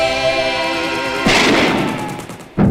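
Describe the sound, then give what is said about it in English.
Two loud gunshots fired at a small deer, the first bursting over a fading musical tone and trailing off in a long rumbling decay, the second cracking sharply right at the end. “why'd you shoot that little deer?”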